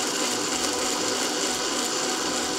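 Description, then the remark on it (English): A blender runs steadily, blending up a drink mixture again with no ice cream added yet, a loud, even, rough whir that holds at one pitch without pause. No one speaks over it. “We're gonna blend this up again.”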